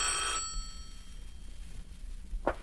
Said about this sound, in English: What? The phone.